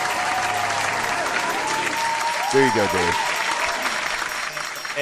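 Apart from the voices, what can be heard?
applause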